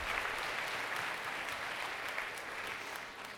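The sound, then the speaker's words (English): An audience claps steadily, a dense, even patter of many hands that holds at a fairly loud level and eases off slightly toward the end, with no voices over it. “First, you can applaud that.”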